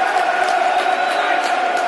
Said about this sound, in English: Solid challenge by Sean Hutchinson. And the cheers of the crowd. That's what I want to see. Good Millwall challenge.